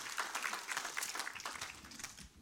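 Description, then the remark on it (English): A church audience applauds the Lord after a prayer, a steady dense wash of many hands clapping that holds at an even level throughout, with no voices standing out. “Applaud the Lord.”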